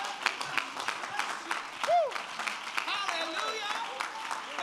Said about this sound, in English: If you believe that, clap your hands unto the Lord one more time.